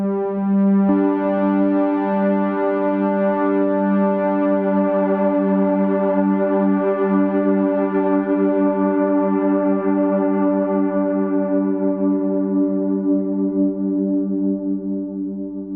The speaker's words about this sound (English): So at first I want that full range oscillation happening, and then as the note decays from the synth, I'm using the faders to adjust the balance, I should say, of the oscillation.